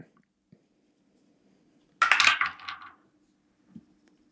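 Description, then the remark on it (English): A single six-sided die (D6) clatters down through a dice tower in a quick tumble of hard, rattling clicks lasting about a second, fairly loud against otherwise quiet surroundings. “Ooh, the dice tower prevails.”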